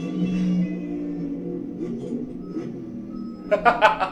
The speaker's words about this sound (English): The beeping sells it, dude.